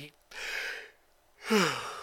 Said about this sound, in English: Excuse me. I keep yawning because it's fucking 12:30 in the morning. And I worked today.